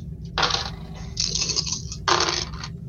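Five dice clatter and rattle across a hard tabletop in three quick bursts, fairly loud, over a low steady background hum with no talking, rolled for a piloting check in a game.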